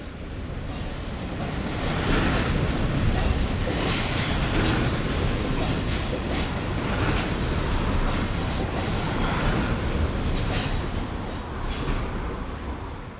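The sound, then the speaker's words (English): A cargo train rumbles past underneath Pelham Bridge, a steady loud roar of rolling wagons with rattling wheels and faint squeals, building in after a couple of seconds and sustained throughout. “So we've just been watching the cargo train go underneath us.”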